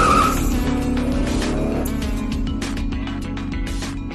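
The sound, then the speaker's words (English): A car engine roars loudly as tires screech sharply at the start, the car being stolen and driven off, accelerating hard and pulling away with a sustained, rumbling growl. “I think somebody just stole my car.”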